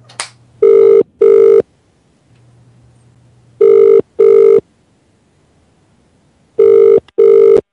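A telephone ringing tone heard while calling, with three loud double bursts of steady buzzing tone, evenly spaced a few seconds apart, with quiet gaps and no voices.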